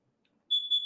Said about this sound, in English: Oh, there go my freaking, damn, now they got to come. See, I knew they needed to replace this freaking smoke detector. And he's like, we come back if it beeps again. It beeped again.